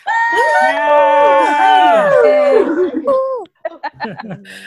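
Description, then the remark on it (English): About 21 people, unmuted on a video call, cheering and whooping together at once, loud and overlapping with sustained high-pitched tones, then breaking into scattered shorter shouts and laughs toward the end. “Well, as we said, we have 21 people here, so let me unmute everyone, and let's just give a big cheer, because this is very, very exciting to have everyone here.”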